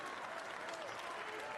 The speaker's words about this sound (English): You got a standing ovation from some big-time marks in the crowd.